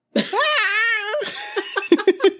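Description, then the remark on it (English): A person lets out a loud, drawn-out, high-pitched squeal that sounds like a cat's meow, followed by a quick run of short giggly chirps. “Literally sound like a cat. Like a legit cat. That's my excited.”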